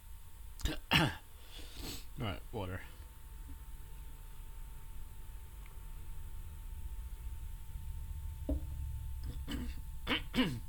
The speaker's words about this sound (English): Great start. It's not a dry cough. Hopefully, I just swallowed some orange the wrong way.